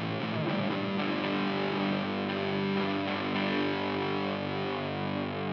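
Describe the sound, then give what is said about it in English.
A heavily distorted electric guitar rings out through an amp with its distortion side turned all the way up, thick sustained chords washed in reverb, loud with no voices over it. “Dial in some reverb.”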